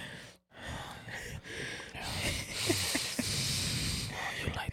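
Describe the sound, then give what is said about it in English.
Heavy, loud breathing right up against a microphone: a few short rough breaths, a brief pause, then a longer, sustained stretch of harsh, noisy huffing and exhaling. No clear words. “I'm breathing into the mic.”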